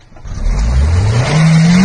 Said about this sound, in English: Guy gets caught in a snowbank and starts revving his car engine. Yeah, that's done. You're done.